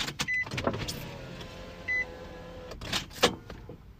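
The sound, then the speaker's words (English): An electric car window motors down in a steady whirring hum lasting a couple of seconds, in a car at a ferry terminal at night under a street light, with a few short beeps and clicks around it and no one speaking. “If I roll the window down, you could hear the ocean splash, the waves.”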